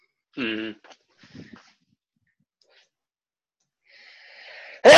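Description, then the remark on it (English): A loud sneeze bursts out at the very end after a short vocal sound and a few seconds of near silence, with faint breathy noise just before it. “Bless you.”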